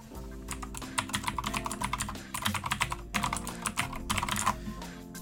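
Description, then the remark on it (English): Rapid, clacky typing on a mechanical keyboard for a computer, with bursts of keystrokes in an uneven rhythm and a few brief pauses, over a faint low hum. “I have a mechanical keyboard for my computer.”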